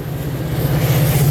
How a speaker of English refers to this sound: So wait, the train right now is going through what used to be a cow tunnel? No. Oh.